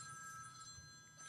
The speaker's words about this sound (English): Did your phone, seriously ring? Your ring is phoning.